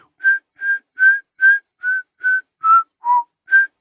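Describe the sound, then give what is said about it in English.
Someone whistles a short pop-style melody of nine evenly spaced notes, mostly hovering around one pitch with a brief dip lower near the end, clear and slightly breathy with no talking. “Oh, can you whistle the verse hook?”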